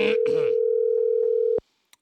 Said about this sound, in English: All right, it is time to make that phone call.